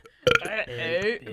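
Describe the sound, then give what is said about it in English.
A single long, drawn-out burp, fairly loud, with a voiced, rumbling tone that wavers like a belched word. “I remember in, like, fifth grade, I could burp the alphabet.”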